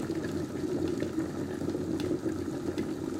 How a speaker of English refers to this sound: There's the kettle boiling.